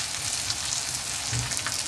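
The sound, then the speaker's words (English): A steady, crackling sizzle of chicken sautéing in butter in a pan over about medium-high heat, dense and continuous with faint popping spatters and a low rumble underneath, no voices. “Always remember, when you're sauteing with butter, never go full blast unless you're using clarified butter, because butter burns really easily,”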